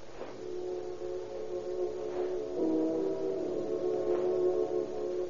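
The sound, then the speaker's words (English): A car engine hums steadily as the car leaves for the ferry, followed by police inspectors; a low droning motor with a slight swell in pitch midway, heard alone at moderate volume without voices. “Inspector O'Farrell and Inspector Connolly take out Riley's hotel and follow his car when he and Johnny Rabb leave for the ferry.”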